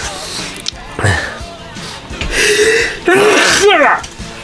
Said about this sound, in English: I'm gonna sneeze.